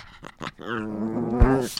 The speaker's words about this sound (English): We are in our parents' apartment. Yep. Off the plaza, and the dogs are just going at it because that's what happens when we start to podcast.